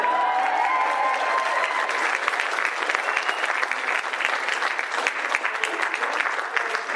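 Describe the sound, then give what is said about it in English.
A crowd applauds steadily for the whole stretch, a dense wash of many hands clapping at once, loud and continuous without any pause, with a faint murmur of voices beneath it. “Wait, everybody's clapping while you start your question starting.”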